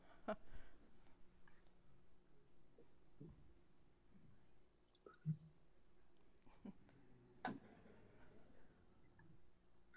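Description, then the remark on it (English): A handful of faint, sharp computer mouse clicks, made while trying to advance a presentation slide, spaced irregularly, with a soft background hum and no clear talking. “Trying to advance a slide. Mouse over. Clicking.”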